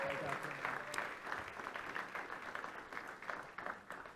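A crowd applauds steadily, many hands clapping in a dense, continuous patter that holds at an even, fairly strong level throughout, with no one talking over it.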